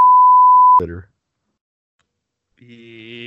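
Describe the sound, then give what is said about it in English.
A steady, high electronic beep holds for under a second, cut off by a short burst of voice, then a pause of silence before someone starts speaking again. “Beep.”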